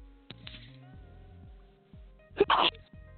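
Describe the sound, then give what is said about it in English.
A couple of quick, muffled sneezy bursts early on, then one loud, sharp sneeze near the end, over a low steady hum with no talking. “You sneezing like crazy.”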